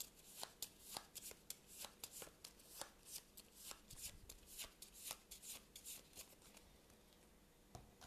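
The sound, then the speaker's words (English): Cards being shuffled: a rapid series of crisp, papery riffles and snaps, bursts of flicking that speed up and pause, with no voices over them. “So we then draw a random location, broken passage, and then we 1, 2, 3, 4 shuffle the Steps of Yoth.”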